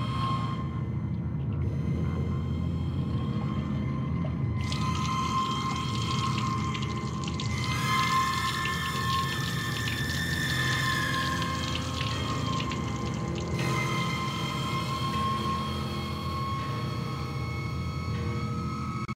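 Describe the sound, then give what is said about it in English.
A man flushes a toilet with a loud, steady rush of water that swells midway, carrying a gurgling, whining tone as the water drains away. No one speaks. “let's return to my first object of fascination, toilet bowl. He flushes it and then the terrible thing happens.”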